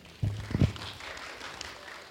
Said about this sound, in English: Everybody's like, can we clap in the mosque? Is it loud?